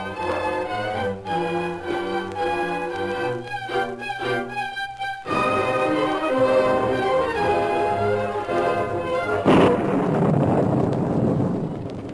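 Orchestral music plays, then gives way to a steady hiss of pouring rain with a loud, rumbling thunderclap about three quarters through, the downpour continuing heavily afterward.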